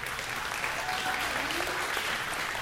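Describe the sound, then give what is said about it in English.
A crowd at Snowbird claps steadily, a dense continuous patter of many hands at an even loudness, with faint murmuring voices mixed beneath the applause. “Keep clapping, because one of these days, some of y'all are going to be with me over there.”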